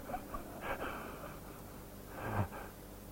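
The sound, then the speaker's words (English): Two slow, soft breaths during a mindfulness exercise, each a gentle airy rush about a second and a half apart, quiet with no talking. “They're like expressing a kind of gratitude and appreciation for breathing.”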